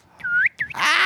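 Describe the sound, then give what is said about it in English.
A person whistles a bird call imitation: two short, upward-sliding whistled notes, followed by a loud breathy, hissing burst as the attempt falls apart. “I can't get my bird noise going.”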